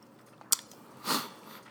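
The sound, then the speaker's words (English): Crisp crunching of a ginger candy being chewed, a sharp click followed by a longer gritty crunch, with no talking. “It's a cough drop. I'm lying. It's not a cough drop. It's a ginger candy.”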